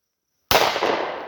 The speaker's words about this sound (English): Jeez, that's loud. You man. Did hit it, though. Bullets are loud.